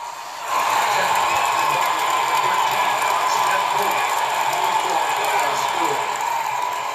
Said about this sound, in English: Nah, we're gonna keep it with the crowd cheering.